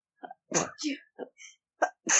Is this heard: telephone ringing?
no